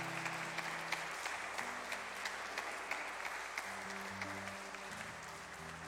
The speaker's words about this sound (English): Could we give her a round of applause as she makes her way forward?